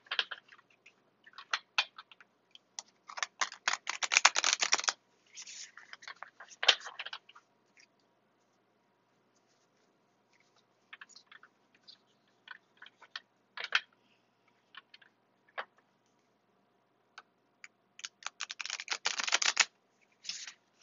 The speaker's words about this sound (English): Okay, I'm shuffling.